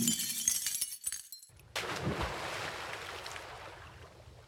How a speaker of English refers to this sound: Well, our engineer in the booth was really on point because we clearly heard not one splash, but two. And the second splash was a lot heavier than the first.